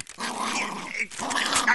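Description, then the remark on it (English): A small dog growls over a page of sermon notes, continuously for under two seconds, a raspy, buzzing snarl with a brief dip in the middle before it rises again, no voices over it. “You Alpo snarfing rat face critter! Give me that paper!”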